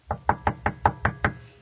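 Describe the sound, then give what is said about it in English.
Seven quick, evenly spaced knocks on a wooden door, clear, in a steady rhythm with no voices. “Thanks for knocking.”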